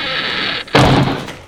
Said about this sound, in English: It's now a highly efficient automatic K3 Uniglide access solution, so we'll replace it in the edit with the sound of an older, more characterful door, to suggest my stepping through a portal into the past.